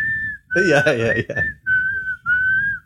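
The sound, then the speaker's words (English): A clear whistled film theme melody from Kill Bill, in long, held notes in several phrases with short gaps. A burst of voices or laughter briefly overlaps the early part, then the whistle continues alone. “who composed that whistling song, who was the composer of the Psycho themes.”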